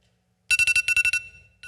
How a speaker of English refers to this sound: Hear that? I like the loud, kind of brash kind of alarm, because if it's not loud enough and it's not brash enough, I don't get up. I just hit the snooze button and I go back to sleep.